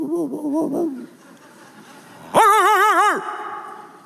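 A person vocally imitates dogs barking behind fences in neighborhood yards, as heard while running: a short warbling burst, a quiet pause, then a louder, sustained wavering howl-like call, clear.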